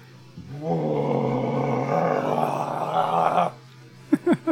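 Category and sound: human body sound, loud burp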